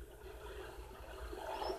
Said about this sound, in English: Pouring a cup of tea.